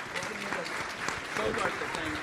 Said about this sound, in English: Great. Awesome. Thank you. Let's give our panelists a big round of applause.